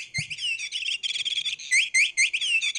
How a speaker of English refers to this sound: Hey, you know what I did? I know we're still talking about TV, but I bought the cats a cat toy. Yes, and I know. It's a little bird.